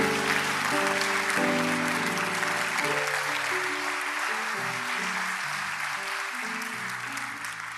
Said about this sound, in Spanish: Dale un fuerte aplauso a tu Dios.